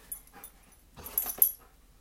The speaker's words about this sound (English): here comes the dogs. Here come the dogs.